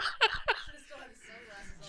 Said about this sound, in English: Jesus Christ, that was a meaty burp. We need to sanitize that microphone. Fuck. Thank you. Thank you for that burp.